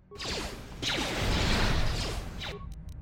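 A video game's standard sliding door whooshes open with a rushing, hissing sweep and sliding tones, holding steady for a couple of seconds before cutting off abruptly, followed by a few quick clicks.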